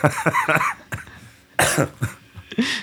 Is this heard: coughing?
yes